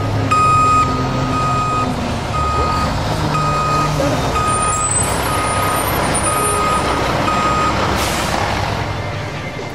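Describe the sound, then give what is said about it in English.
A large truck's steady reversing beeps repeat in a regular rhythm over a loud diesel engine rumble, with a hiss of air brakes near the end. “what do you mean, truck? Go around it.”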